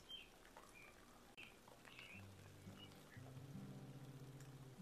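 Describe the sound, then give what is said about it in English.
Soft, steady rain patters outdoors as a faint, even hiss, with occasional bird chirps and a low droning hum rising in the background partway through. “And there's something really soothing about the sound of rain.”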